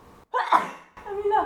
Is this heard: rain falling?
no